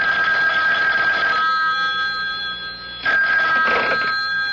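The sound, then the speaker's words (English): A telephone rings over the line of a call made from a public phone, in two steady, warbling bursts separated by a short pause, slightly thin and filtered as if heard through a receiver, with no one talking. “Then he crossed to the public phone to make a call.”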